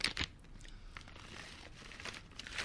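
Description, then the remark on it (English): A sharp burst of tearing as the top of a package is ripped off, then crinkling and rustling of the packaging material continuing for a couple of seconds, with no one speaking. “No, I ripped off the top.”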